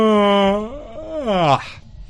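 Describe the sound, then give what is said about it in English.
A man lets out a long, voiced yawn lasting about two seconds, its moaning tone sliding up and then dropping before trailing off into a breathy exhale. “He's holding in a yawn.”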